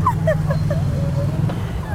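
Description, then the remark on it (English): A bus rumbles past on a street, its deep engine drone steady and loud throughout, with faint voices and chirpy background sounds above it. “And here's the bus.”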